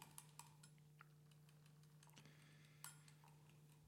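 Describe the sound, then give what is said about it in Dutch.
A kitchen egg timer being set: a scattering of small, irregular clicks and a brief ratcheting burst, fairly quiet over a steady low hum, with no one speaking. “Ik moet inderdaad een eierwekker zetten.”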